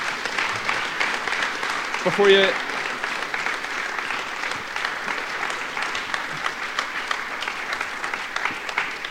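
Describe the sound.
An audience applauds steadily for several seconds, a dense wash of clapping that holds at a fairly even level, with a brief voice or cheer rising above it early on.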